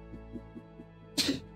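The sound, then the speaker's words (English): A single sharp sneeze bursts out near the end, fairly loud, preceded by a few soft rhythmic breaths as it builds. No one speaks. “Bless you.”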